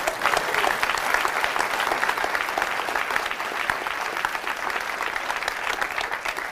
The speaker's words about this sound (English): So thank you guys for coming. Let's clap it up for each other.